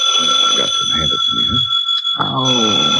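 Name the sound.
telephone ringing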